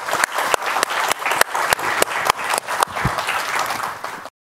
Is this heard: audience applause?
yes